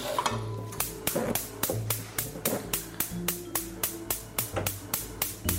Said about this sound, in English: That clicking you hear is me turning the heat back on, because it turned the range off for just a second while I got the butter.